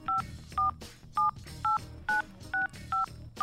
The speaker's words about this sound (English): Near the beginning of the tune, at the 10-second mark, you can hear a telephone being dialed.